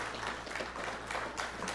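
A short burst of steady applause from a crowd for a 10th anniversary, a dense crackling wash of many hands clapping at once, fairly quiet and even throughout with no voices standing out.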